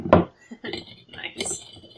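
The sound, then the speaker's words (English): A glass knocks with a sharp clink, then Disaronno is poured into it, a short uneven splashing pour lasting under two seconds. “I got my Disaronno right here and I'm also going to pour myself one right now.”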